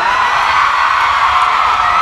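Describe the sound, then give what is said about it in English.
A large concert crowd roars with sustained shouting and cheering, a dense, loud wall of voices with no break and no single voice standing out. “gets a crowd of white people to say the N-word.”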